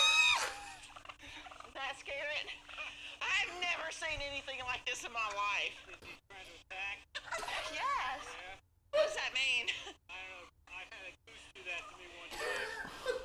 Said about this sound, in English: So this is a local turkey. We got turkeys. We got gooses. So that's a turkey.